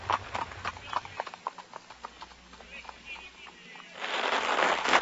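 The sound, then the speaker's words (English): Horse hooves clip-clop in a steady, fairly quick rhythm as the coachman Johann starts the horses and the carriage drives off, ending in a broad rush of rolling wheel noise, moderately loud. “We drove off as Johann started the horses at a quick pace.”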